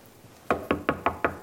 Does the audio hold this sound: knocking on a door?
yes